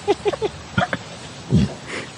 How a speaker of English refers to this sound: It's a horse. Oh, that's a horse farts.